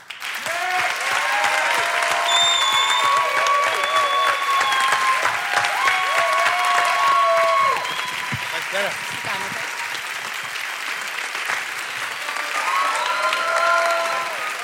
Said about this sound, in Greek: Θέλω τώρα το πιο ζεστό, το πιο ωραίο χειροκρότημα για αυτά τα αγόρια που τόσο αγαπώ και ξεχωρίζω πολλά χρόνια τώρα.